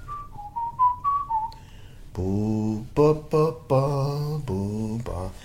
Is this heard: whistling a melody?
yes